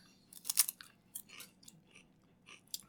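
Close, crisp crunching of a potato chip: a loud initial bite followed by several irregular chewing crunches, growing softer over a few seconds with no talking.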